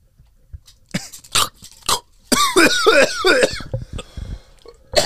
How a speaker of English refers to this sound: She made me cough.